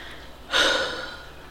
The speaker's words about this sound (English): There's a lot of breathing in this episode.